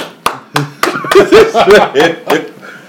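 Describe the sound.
A man claps his hands several times in a loose, uneven rhythm while voices and laughter go on around him, the sharp slaps standing out clearly against the chatter.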